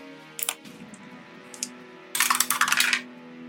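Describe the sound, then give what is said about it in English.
Dice rolled for damage in a game, tumbling across a hard table: a few separate sharp clicks, then a quick burst of bright rattling clatter that settles, all over a steady low hum with no talking. “Alright, roll the damage.”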